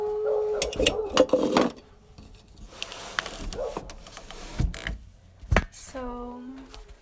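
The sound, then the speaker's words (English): Pet dogs bark in a few short, sharp bursts, a cluster near the start and another toward the end, mixed with scattered tapping and clattering sounds at moderate loudness, during an astrology ASMR recording. “We just entered Taurus season, and this is supposed to be relaxing, and my dogs are barking.”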